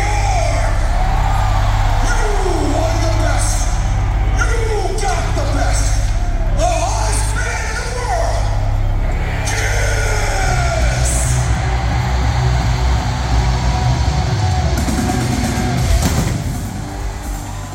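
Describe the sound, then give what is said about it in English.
A loud, distorted phone recording of a live concert intro: wailing, siren-like tones swoop over a heavy, droning low rumble, then give way to a steadier roar of sound. “All right, now look, I'm going to cut that off because that is actually right from my phone, and there's probably audio of me sobbing, you know, running toward the stage.”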